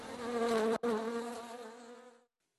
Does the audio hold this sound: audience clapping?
no